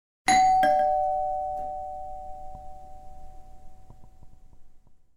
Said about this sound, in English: But he was getting it, after all, so he's gonna go up and ring the bell.